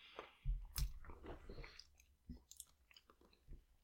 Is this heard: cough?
no